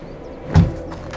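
A car door shuts with one solid, low thud partway through as a man gets out of the car beside a modern glass-covered chalet, preceded by a quiet mechanical rustle and followed by a few faint scrapes. No one speaks.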